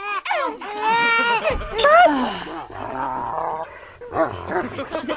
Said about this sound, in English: I hear a dog.